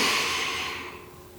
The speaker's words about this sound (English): And I'd like to invite you to begin breathing in through your nose. So let's take a slow breath in.